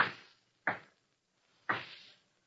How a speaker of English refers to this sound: She's going to lock the door, that's all. Taking no chances, see?